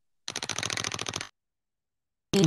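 The Wheel of Punishment, a prize wheel, spins with a fast, steady run of sharp clicks for about a second, then stops; after a short silence, a sudden loud burst of sound cuts in at the end.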